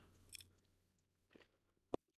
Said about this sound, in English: So, just chew the ice on that one. Bit of ASMR for you all.